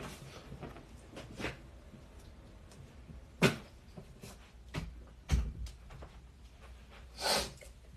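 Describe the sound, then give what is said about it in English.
A door is pushed shut, with a few short, sharp thumps and a soft swish spread over several seconds against a quiet background, and no one talking. “Hold on one second. Let me close the door.”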